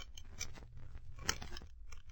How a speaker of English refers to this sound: That is why I brought a few instruments with me, Watson, to force the lock.